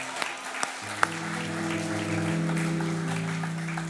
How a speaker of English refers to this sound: You can clap. Come on.